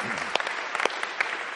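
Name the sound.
audience applauding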